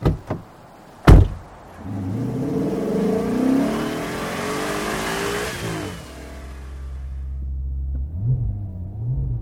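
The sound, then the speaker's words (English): A couple of sharp knocks like a car door, then a Maserati sports car engine revs up with a rising, climbing growl before settling into a low, steady idle with one brief blip of the throttle, as the car arrives to pick someone up for a ride to the airport. “And here she comes now to pick me up in her Maserati, which has most definitely been tested.”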